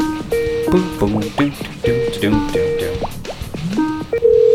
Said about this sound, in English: We're going to hear it dial out here.